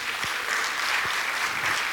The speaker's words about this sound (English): Somebody give the Lord a big round of applause today. Amen.